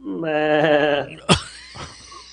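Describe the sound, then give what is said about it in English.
A person imitates a goat with a wavering, nasal bleat lasting about a second, followed by a sharp exhale and a brief breathy trailing sound. “No, I was about to do a goat noise, but I've never done that before in my life, so try, who knows how that would sound.”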